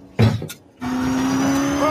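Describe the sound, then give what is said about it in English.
A car engine in a movie scene catches after a brief burst and settles into a loud, steady, droning hum, its pitch starting to climb slightly as it revs near the end. “Is it this car? It's that car.”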